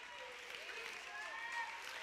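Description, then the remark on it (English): An audience claps its hands in a dense, steady wash of applause, with a few voices calling out over the clapping. It stays fairly soft and even throughout. “Somebody clap your hands if you believe what I'm.”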